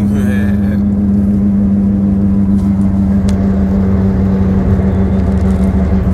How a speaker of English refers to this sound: But I hope y'all was able to hear me through this loud ass car.